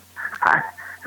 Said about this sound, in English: Why did I hear ringing in the back? Oh, okay. You have a landline? It's our house.